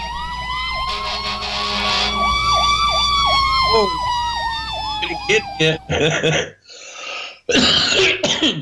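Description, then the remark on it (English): A fire truck siren wails loudly, sliding into a rapid yelping warble before cutting off, followed by short bursts of voices and coughing. “A fire truck.”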